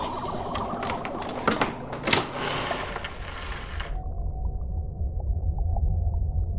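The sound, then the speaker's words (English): A door creaks and scrapes open for about four seconds, with a few sharp clicks, then gives way to a steady low rumble and a faint hum. “Draw your weapons. I'm opening the door.”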